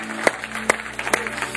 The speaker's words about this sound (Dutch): Fantastic. Why don't we give Jesus a hand? Geef Jezus een grote applaus.